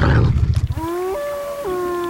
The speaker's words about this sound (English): A wild, predatory wolf.